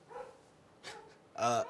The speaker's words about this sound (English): Shut up, dog.